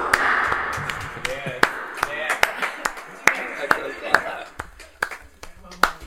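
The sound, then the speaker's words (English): Irregular hand claps ring out about a dozen times, sharp, some louder than others, with a slight echoing tail over a low background murmur. “Let's clap him with an echo.”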